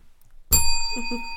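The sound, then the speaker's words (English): A bell is struck once after a brief silence, giving a bright, clear ding whose tone rings on steadily without fading much. A faint murmur of voice sits under the ringing. “You can hit the bell for your disclaimer.”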